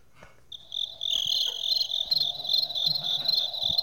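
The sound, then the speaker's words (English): A person makes cricket noises into the microphone, a fairly loud high-pitched trill that starts after a short pause and carries on in rapid, even pulses to the end. “I realized recently that if I make cricket noises into the microphone, the crickets stop, and I want to try it again, because maybe it was just coincidence that they all got laid and didn't need to cricket anymore.”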